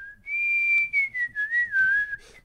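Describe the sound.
A person whistles an eerie, wavering sci-fi space tune, E.T.-style music: a sustained high note that glides and warbles downward in a few pulsing phrases, with no talking.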